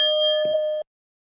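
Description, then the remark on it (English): A single clear bell rings out loud, its bright tone holding steady for under a second before being cut off abruptly into silence. “What did you drag that bell out from now?”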